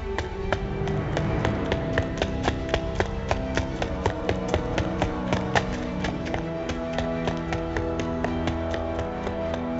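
Quick, evenly spaced footfalls of a person running down an empty hallway patter along at a running pace, moderately loud, over a steady tonal background that sustains throughout.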